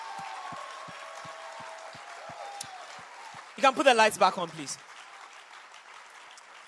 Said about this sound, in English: I want you to celebrate God with an extra loud, extra long hand clap.